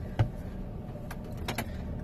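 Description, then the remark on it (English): Steady low rumble of a car interior, with a few soft clicks and knocks scattered through it, moderately quiet, no one speaking. “I'm in the car right now.”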